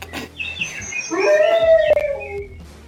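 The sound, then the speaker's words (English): A dog lets out a long wavering howl that sounds electronically processed, with a buzzy, synthetic edge from a voice-changing filter that makes it sound like General Grievous. It's loud and alone, with no one talking. “And this is a dog as General Grievous.”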